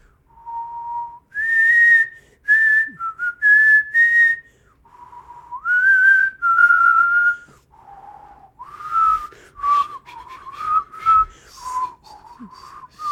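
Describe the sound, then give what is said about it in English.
A person whistles a slow, sustained melody alone, with long held notes, upward leaps and gentle slides between pitches, fairly loud, with short breaths between phrases. “Do ….”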